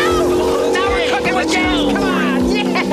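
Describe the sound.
A cartoonish car engine sputters and struggles as characters try to drive one of the leftover Neutrinos cars, which is out of fuel, with wobbly whining tones over irregular low chugs that never catch into a steady run. Fairly loud, with voice-like sounds mixed in.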